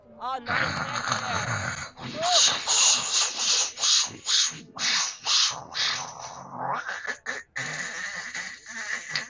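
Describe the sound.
A person imitates someone snoring with a run of raspy, breathy snorts and rattling inhales, repeating in a quick, uneven rhythm for several seconds at a fairly loud level.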